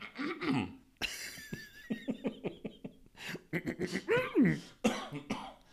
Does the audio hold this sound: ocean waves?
no